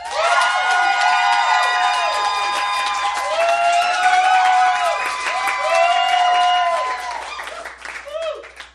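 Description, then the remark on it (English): A crowd claps and cheers loudly for several seconds to vote for the winner of a debate, dense applause mixed with high whoops and shouts that rise and fall before tapering off at the end. “please clap now.”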